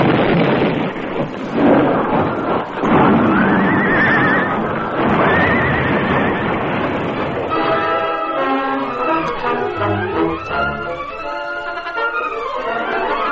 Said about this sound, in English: He saw the masked man reach the bridge, then Tonto. The hoofs of both horses clattered on the heavy planking. They were just halfway across Crazy Creek.